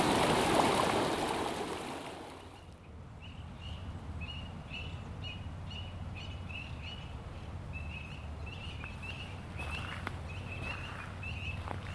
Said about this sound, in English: So, just going through a nice, well-deserved, well-needed hike through a place called Terracotta. I haven't even started. I'm starting pausing by the little babbling brook.